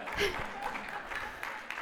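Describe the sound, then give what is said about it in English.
A short burst of audience applause, a dense wash of clapping hands at moderate volume, with murmuring voices mixed in underneath. “That is so non-applause worthy, but thank you.”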